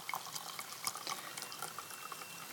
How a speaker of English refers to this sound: It was a hearty pour.